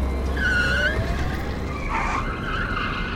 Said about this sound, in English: What are those? Those are self-driving smart cars, still up and running. Ha! It looks like they're chasing the one in front.